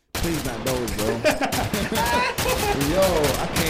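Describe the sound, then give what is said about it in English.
Rapid bursts of gunshot sound effects crack out in quick succession, loud, layered over a dense, continuous bed of tonal music or voices for several seconds. “Let's go back to some more gunshots.”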